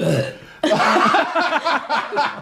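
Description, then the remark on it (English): A low, croaking burp rumbles, followed right away by bursts of breathy, broken laughter or vocal noises that stay loud until the end. “Don't burp either.”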